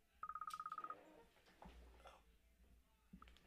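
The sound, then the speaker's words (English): An incoming phone call's ringtone cuts in as a quick burst of about a dozen short, even electronic beeps, clear, lasting under a second, then gives way to low background rumble. “I had a phone call interrupt you.”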